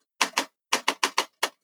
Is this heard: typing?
yes